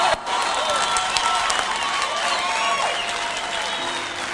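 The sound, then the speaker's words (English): Sustained applause from a large audience standing to clap for their parents, a dense, steady wash of many hands clapping at once, loud throughout with a few scattered voices mixed in. “Can you stand to your feet and clap for our parents beyond their ability?”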